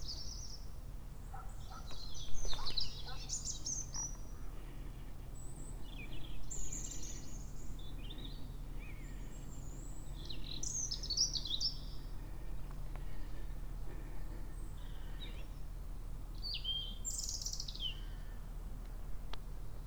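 birds singing outdoors

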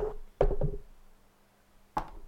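microphone being bumped

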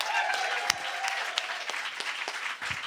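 audience applause

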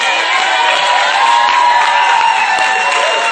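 audience clapping and cheering

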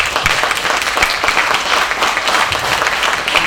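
audience applause

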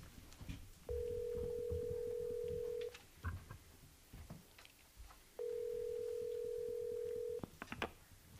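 telephone dialing and ringing

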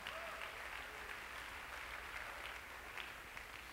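audience clapping hands

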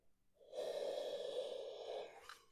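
yawn

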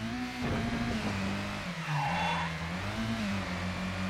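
video game car driving

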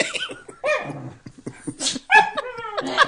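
dog vocalizing

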